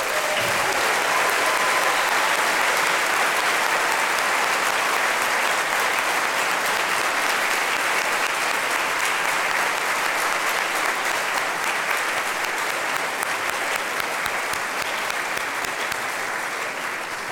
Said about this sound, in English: But now I ask you to please stand and be welcomed. And everyone, please join me in a round of applause for our seniors. Seniors, please stand.